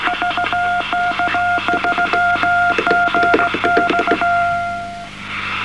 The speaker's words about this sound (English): Yes, well, we don't understand Morse because we've forgotten it since the last exam.